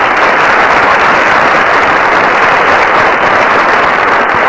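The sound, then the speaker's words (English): A crowd claps steadily for the teams of a panel game show, a dense wash of hand claps that stays loud and even for the whole few seconds, with no voices on top. “I suppose you'd better applaud the teams then.”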